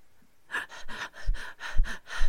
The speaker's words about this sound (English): So it's at this point that unexplained panting noises are captured on the recorder, followed by an EVP of the spirit saying, March.